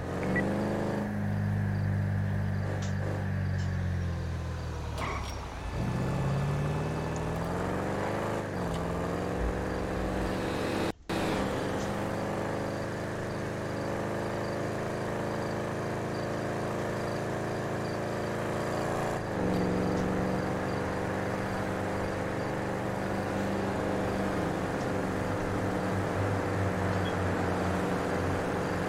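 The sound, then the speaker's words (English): A car engine drones steadily from inside the vehicle while driving and merging into the left-hand lane, its pitch rising and dropping as it accelerates and shifts gears, with constant road rumble throughout. “I gotta merge into the left-hand lane here.”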